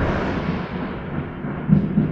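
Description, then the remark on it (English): A deep, continuous rumble of thunder from a thunderstorm right outside rolls on for about two seconds, with a couple of heavier swells near the end and no voices over it. “Dude, we're right in the mix of this f***ing thunderstorm.”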